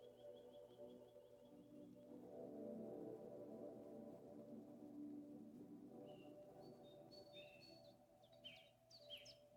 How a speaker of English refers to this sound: Luxuriant ferns cover the forest floor. Birdsong permeates the air.